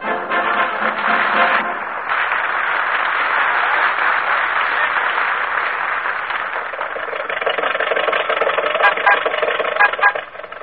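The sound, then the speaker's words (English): An old car engine turns over and sputters as Rochester tries to get the car started, giving it lots of gas: a loud, rough, continuous rattle that grows choppier and more uneven toward the end. “Get the car started.”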